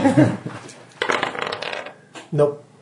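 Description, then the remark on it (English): Dice clatter and skitter across a hard floor in a quick burst of rattling impacts, with brief voices at the start and end. “Can you stop throwing my dice on the floor?”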